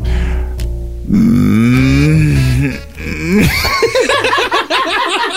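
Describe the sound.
A person on a Greek radio show gives a long, low, drawn-out moo imitating how a cow would sound making love, wavering in pitch for a couple of seconds, followed by a burst of animated laughter.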